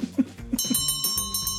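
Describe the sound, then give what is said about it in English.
A closing bell rings in a rapid, steady run of bright metallic strikes, about eight per second, sustained for roughly a second after a short burst of lower tones. “Oh, ladies and gentlemen, there is the closing bell.”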